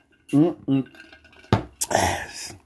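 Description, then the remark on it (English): Two short voiced sounds, then a sharp clink, followed by a loud, hissy slurp of someone sipping a drink through a straw from a Stanley cup, lasting about a second. “She's pointing to the cup like, yo, you're making noise, drinking out of your little Stanley cup.”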